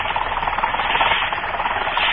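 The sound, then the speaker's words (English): A small motorboat engine chugs along at a steady, unchanging pace, its rough mechanical drone filling the whole stretch fairly loudly, with no voices over it, as the boat moves slowly and cautiously through thick fog toward an island off the Cape on the Massachusetts coast. “Moving cautiously, a small boat makes its way slowly toward one of the islands off the Cape.”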